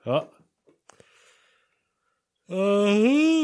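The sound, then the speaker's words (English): A loud, drawn-out voiced yawn that swells and bends in pitch, preceded by a brief vocal sound and some soft breathy rustling. “Yawns, here they come.”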